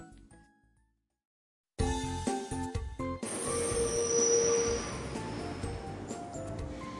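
After a brief quiet gap, a broad rumbling train station ambience swells up, with a steady high whine and clinking, metallic textures like a train moving, fairly loud and continuous, as a passenger prepares to board a train.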